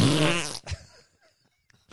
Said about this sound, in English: The farting sound is pretty tight. That's very German. I wish it was a fart.